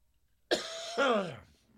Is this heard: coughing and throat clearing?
yes